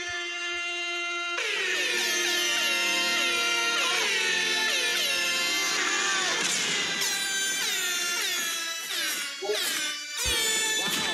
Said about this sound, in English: I got an air horn